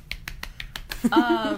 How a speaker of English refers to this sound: Self-applause.